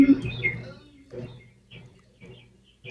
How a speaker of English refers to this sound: I think it's the birds behind you seem to like it.